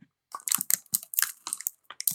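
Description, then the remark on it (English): Someone bites into and chews a crunchy, bumpy, misshapen nut candy bar, with a quick series of loud, crackly crunches in an uneven rhythm over a couple of seconds. “Pretty crunchy.”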